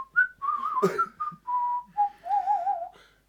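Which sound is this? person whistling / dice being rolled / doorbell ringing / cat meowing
person whistling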